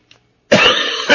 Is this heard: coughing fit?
yes